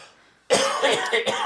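After a brief hush, a loud burst of harsh coughing and throat clearing erupts, lasting about a second with a few rough, raspy pulses and no speech.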